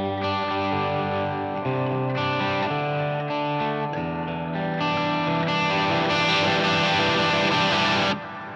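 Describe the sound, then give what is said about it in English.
An electric guitar played with a pick through a straight Marshall amp with the Tube Screamer pedal switched off, ringing chords strummed continuously and fairly loudly with no voices, swelling slightly before cutting off sharply just before the end. “And if I turn the Tube Screamer off, back just to the straight Marshall, very dynamic again.”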